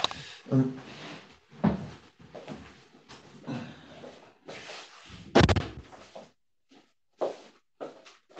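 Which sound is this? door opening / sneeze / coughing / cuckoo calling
door opening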